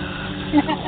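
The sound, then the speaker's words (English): A steady, low humming drone of a warp engine runs unbroken through the second, with a few faint tonal swells rising briefly above the even rumble. “Sometimes the hum warp engine sounds just soothe myself.”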